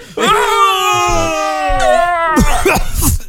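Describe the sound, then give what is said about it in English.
A voice imitates loud, drawn-out moaning, a long wavering tone that sustains for over two seconds before breaking into rougher, throaty bursts at the end. “Or somebody moaning like crazy.”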